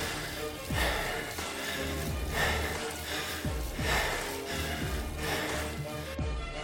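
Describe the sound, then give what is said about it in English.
Heavy, rhythmic breathing of a cyclist during a ride, with about four or five deep breaths drawn at a steady pace over a constant low rumble. No one speaks. “but I just want to get the breath, the breathing.”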